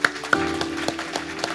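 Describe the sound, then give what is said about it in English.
An audience claps in a steady, brisk rhythm, sharp beats landing roughly every quarter second over a soft sustained musical hum, with no one speaking. “Come on, clap your hands.”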